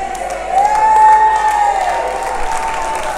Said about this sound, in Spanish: ¿Sabe qué? Hace rato que estoy hablando de ustedes y ahora es que vienen a aplaudir.